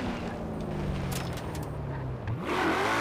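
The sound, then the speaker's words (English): A steady, loud video game car engine, a Porsche driven fast on roads, drones with its pitch slowly sinking, a few sharp knocks in the middle, then the engine revs back up quickly near the end. No one speaks. “No, it's impossible to drive this thing at this speed on these roads in first yeah, person.”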